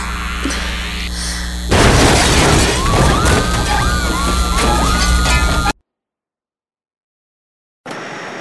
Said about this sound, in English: An explosion in a science lab in downtown Manhattan today caused train delays and gridlocked traffic. The cause of the explosion remains unclear